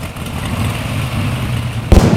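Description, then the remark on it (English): A low, rough engine churns and rumbles unevenly as it is started, then coughs out a sharp, loud pop near the end, like a motor sputtering and backfiring as it struggles to catch; its intake manifold is shot. “It sounds like the intake manifold's shot.”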